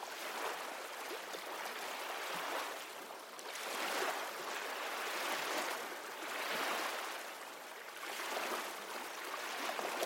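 Ocean waves wash in and recede in a steady rhythm, a broad hiss of surf swelling and fading every few seconds, with no voices over it.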